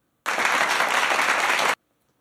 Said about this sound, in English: Oh, where's the clapping button?